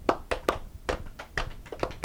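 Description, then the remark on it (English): A single person claps alone at a steady, deliberate pace, about nine crisp claps in two seconds, with no talking. “Slow clap moment.”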